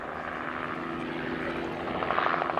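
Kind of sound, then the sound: vehicle, helicopter flying overhead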